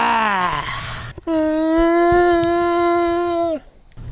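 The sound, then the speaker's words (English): A person voices a loud, sustained roar meant as a bear's, sounding more like a lion's, held steadily for a couple of seconds after a shorter falling call, with no talking. “That's more lion than bear, I think.”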